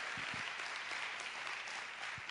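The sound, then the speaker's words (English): Steady applause from a crowd giving God a hand clap of praise, a dense, continuous wash of many hands clapping at once, fairly loud throughout with no voices standing out. “If you're thankful that God has set you free, would you give God just a mighty hand clap of praise?”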